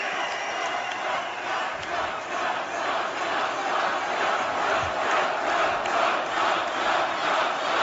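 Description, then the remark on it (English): A large crowd at a Trump rally roars steadily, a dense wash of cheering and chanting voices mixed with clapping that swells slightly in pulses and stays loud throughout, with no single voice standing out. “It's like he's fueled by their chants and their applause.”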